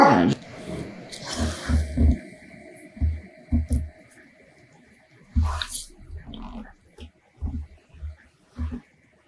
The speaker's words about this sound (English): Sorry, dog is going to bark. Like I said, I have a Boston terrorist.